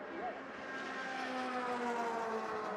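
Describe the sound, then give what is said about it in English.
Four race cars roar past on a track in a tight drafting pack, their high engine whine loud and continuous, the pitch sliding gradually lower as they go by. “Jared Thomas is getting a big push now. One, two, three, four cars.”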